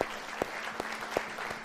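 An audience at Gateway church applauds in thanks for a staff member on his last Sunday: a soft, steady wash of many hands clapping, with a few sharper claps standing out at a regular beat, over a faint low hum.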